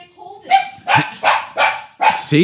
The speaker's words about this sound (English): See? Be quiet, dog.